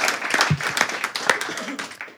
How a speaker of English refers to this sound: So that's an excellent initiative. I think that also deserves a round of applause. Very good.